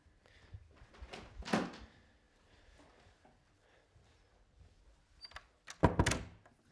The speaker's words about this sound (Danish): And I think I'll turn off the lights here and close the door.